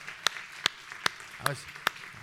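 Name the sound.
audience clapping hands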